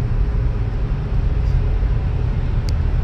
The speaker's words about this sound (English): I hope you guys have a blessed Monday, and traffic has gotten extremely thick at this point, so I'm gonna get off, and I hope you guys take care.